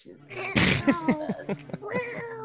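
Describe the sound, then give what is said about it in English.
A cat inside a coffin lets out a few short meows in quick succession, following a brief rustling burst, with a faint voice-like murmur in the background. “I think my cat's in the coffin too.”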